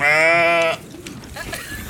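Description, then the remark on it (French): A goat at its enclosure on a city farm in northeast London, as biscuits are brought out, lets out one loud, drawn-out bleat, then quieter shuffling and faint animal noises follow. “Dès qu'on sort les biscuits, les chèvres accourent.”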